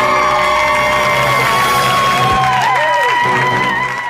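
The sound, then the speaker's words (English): A loud, continuous audience roar of cheering and clamoring voices, with whoops and shouts rising and bending in pitch over a dense wash of noise for about four seconds. “Like I said, that is great footage, and that is the perfect example of the kind of annoying crowd thing that can happen”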